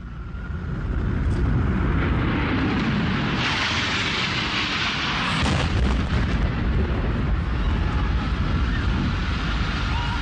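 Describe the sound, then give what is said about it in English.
United Airlines Flight 175, a jet airliner, slams into the South Tower of the World Trade Center with a massive explosion, a thick roaring rumble that swells mid-way and keeps thundering for the full ten seconds, loud. “United 175 crashes into the South Tower of the World Trade Center.”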